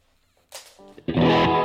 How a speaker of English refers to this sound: Okay, so that's called the Levitate. The top left part of the screen there. That is a reverb and delay pedal in one.